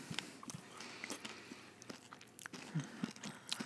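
Loud, irregular crunching and chewing of pork crackling, with sharp brittle cracks and wet mouth sounds repeating unevenly over a few seconds, no talking.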